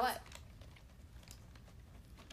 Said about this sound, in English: Oh, I just realized the microphone is probably picking up every single chew. Right. Oh, God. Because I'm, like, right in front of it.